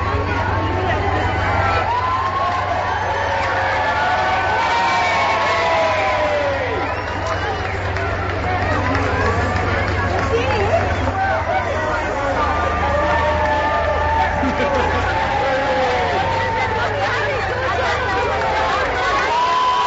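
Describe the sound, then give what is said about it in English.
A large outdoor crowd cheers and chatters continuously at the Olympic torch relay in Harrow, many overlapping voices forming a loud, steady roar, with a low engine-like hum running underneath throughout. “Now, this video we're going to show here shows the Olympic torch.”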